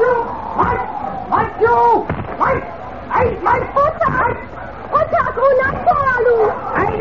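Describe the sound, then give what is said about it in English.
A team of four sled dogs pulling a sled in the frozen Arctic barks and yips excitedly in rapid, overlapping bursts, loud, continuing without pause for several seconds, while a young Eskimo and his sister trot beside the sled. “As we continue now, far north in the frozen Arctic region, a dark-skinned young Eskimo and his sister are trotting beside a sled drawn by four dogs. Listen.”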